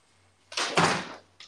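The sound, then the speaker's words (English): A door is opened for a dog that scratched at it, with a brief, airy whoosh and rattle lasting under a second, followed by a small soft knock, over a low steady hum. “I swear you scratched at the door.”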